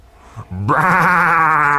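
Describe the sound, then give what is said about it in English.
A single loud, harsh sheep bleat that rises into a sustained, wavering scream, preceded by a brief low grunt and lasting over a second with no talking. “It screamed, and then it craned its neck towards the open door.”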